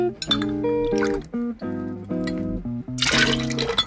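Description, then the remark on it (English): Old Smoky Blackberry Moonshine pours in short gurgling bursts into a small measuring glass, the ringing tone climbing as it fills, with a few light glassy clinks and no one talking. “Two parts of our Old Smoky Blackberry Moonshine to one part of Grand Marnier. So first we'll go with 8.”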